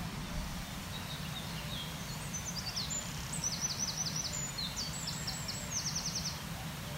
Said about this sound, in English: There we go, another wren, just a few metres away, singing quite obviously.